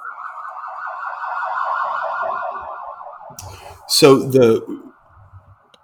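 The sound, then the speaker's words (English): An emergency vehicle's siren wails in a fast, steady warble as it goes by, then a person briefly speaks over it as the siren carries on more faintly. “I'm sorry, I've got a siren going by.”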